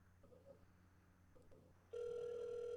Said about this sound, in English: I'm going to call his mobile. Do we hear it ringing?